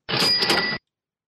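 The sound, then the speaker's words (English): A single bright notification bell rings out for under a second, its high metallic tones layered over a brief noisy, clattering burst, then cuts off into silence. No one speaks. “That is the notification bell.”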